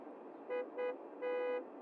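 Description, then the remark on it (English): Steady road traffic rumble, with a car horn honking three times: two quick beeps and then a longer blast. “I'm so happy I'm in traffic.”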